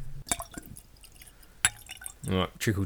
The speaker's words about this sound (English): because we're bottle killing a Hellier's Road bottle that I've had for a little while now. I'm actually going to pour the last bit into my glass now, so you can join with us as the bottle is killed.